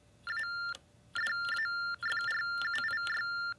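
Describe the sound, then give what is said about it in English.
Electronic keypad beeps from a handset's built-in speaker as letters are typed: steady, high-pitched tones in three bursts, the later ones long and broken by many quick key clicks, with no talking. “And what I'll do is I'll just type some letters, and you'll hear these.”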